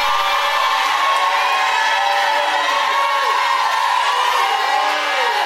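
A large audience shouts and cheers together in a loud, sustained roar, many overlapping voices going continuously with rising whoops and no pauses.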